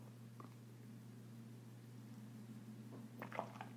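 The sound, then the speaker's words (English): Soft, quick slurps of someone sipping hot coffee, a faint one early and a small cluster near the end, over a steady low electrical hum with no talking. “So let me take a sip of my coffee.”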